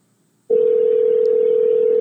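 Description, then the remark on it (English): After a brief silence, a loud, steady electronic ringing tone from an outgoing phone call starts abruptly and holds unbroken to the end, with no voices. “Pick up your goddamn phone.”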